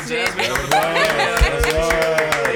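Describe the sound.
An applause sound effect: steady, fairly loud clapping with sharp repeated hits, mixed with voices that seem to whoop or cheer over it for a couple of seconds.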